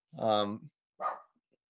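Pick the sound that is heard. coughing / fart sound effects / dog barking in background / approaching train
dog barking in background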